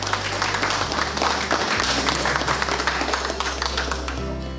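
A crowd applauds steadily, a dense wash of clapping hands that stays loud throughout, with a low sustained hum underneath, likely from music or a venue sound system.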